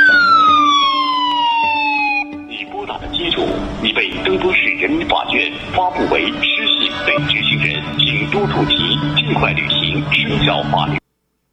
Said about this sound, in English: What happens is your phone goes off as a siren